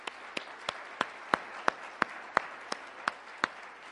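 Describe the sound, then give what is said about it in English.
A church audience applauds a pastor in a steady wash of clapping, with sharp, evenly spaced claps standing out about three times a second throughout. No one speaks. “If you would, give him a round of applause.”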